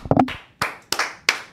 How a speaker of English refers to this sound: There's probably some writers down the hall that are like still doing their story. Like, what the hell is going on? Why are people clapping so loud in the EEI studio?